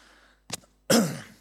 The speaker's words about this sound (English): Awkward sideways cough again.